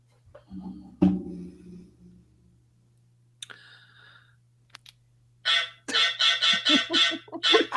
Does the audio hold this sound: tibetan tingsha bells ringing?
no